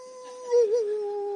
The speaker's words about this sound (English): That's a wolf, by the way, in case you don't know what that is. Maybe they're the sounds that they heard at night.